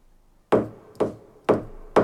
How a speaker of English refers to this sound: Hammering on a piano. He's using his finger to flick the strings inside the piano.